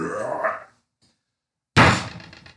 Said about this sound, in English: which was June finishing her ale and slamming it on the counter.